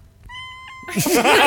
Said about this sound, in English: everyone just, you know, like, stops talking and then big kitty noises.